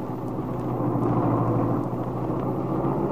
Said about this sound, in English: A few minutes later, Lisa was brought down and carefully helped into Paul's roadster, with the lap robe tucked snugly around her. Now, Paul guides the car out of the hospital driveway.